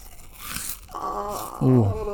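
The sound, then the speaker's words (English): A brief burst of crisp crunching, like someone munching a crunchy snack, fades after under a second, and a voice then speaks over the quiet that follows. “Oh, now she's eating on the podcast.”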